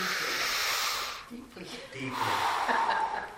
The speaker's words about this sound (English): I'm going to do something, and I want you to see if you know what I'm doing. You're breathing. I'm what? You're breathing. I'm breathing.